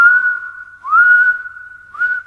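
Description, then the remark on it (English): A person gives a long, steady high-pitched whistle held for a couple of seconds, swelling louder in two bursts with a slight upward slide at each, with no talking. “He let out a long, high whistle.”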